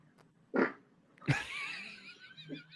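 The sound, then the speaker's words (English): A woman farts: a short blurt followed by a longer, buzzy fart that wavers and trails off over a couple of seconds, fairly loud, with no talking. “She farted before he even poked her butt.”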